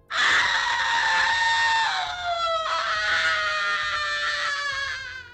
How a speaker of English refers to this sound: She peered at the still waters and screamed.